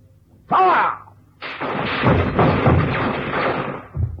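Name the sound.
burst of gunfire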